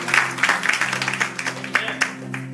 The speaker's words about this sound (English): That was climactic right there, man. We could have just finished that. People clapped.